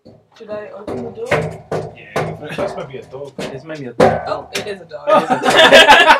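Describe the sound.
A series of sharp knocks on a door, irregular and fairly loud, mixed in with a voice talking over them, followed by a burst of noisy laughter-like sound at the end.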